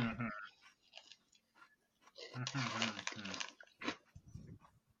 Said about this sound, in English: Hold on, sorry, I'm still chewing.